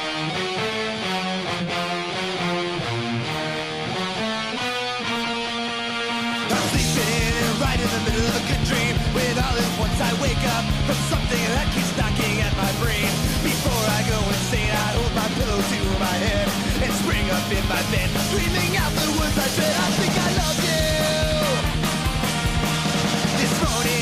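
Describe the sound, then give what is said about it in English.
A musical intro song plays loudly, opening with steady layered tones before a fuller, busier band arrangement kicks in after about six seconds and drives on without any talking. “But before we can do that, I think we got to give these fun folks a nice little musical intro, shall we?”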